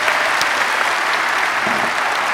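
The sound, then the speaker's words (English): Steady, loud applause from an audience for the speaker's father on Father's Day, a dense wash of many hands clapping at once with no pauses, sustained evenly throughout with no voices standing out. “So anyway, I know you already kind of gave him an applause, but would you do that again?”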